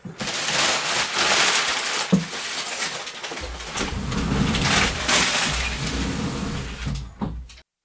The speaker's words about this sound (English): Hold on. I just gotta move this paper that's sitting on my chair. My cat's gonna make this noise the whole time otherwise.